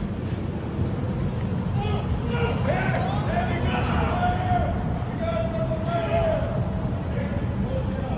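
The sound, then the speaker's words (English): Steady, heavy engine rumble fills the scene, with a whining tone that climbs and holds as engines rev, over a busy outdoor background of wind and indistinct crowd noise. “I love it when I hear revving engines.”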